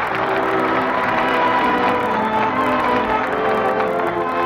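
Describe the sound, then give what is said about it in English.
Sustained audience applause at the close of a Lux Radio Theater broadcast hosted by Cecil B. DeMille from Hollywood. A dense, even wash of clapping stays loud and steady for the whole stretch, with a faint tonal hum running underneath and no voices standing out. “That applause is the people's answer.”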